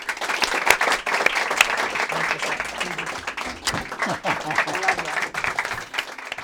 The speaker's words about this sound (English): And thank you very, very much. Round of applause for the Administrator.